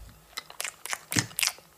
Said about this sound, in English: Right, I will move my chair. Have a bite of the banana. It's so delicious.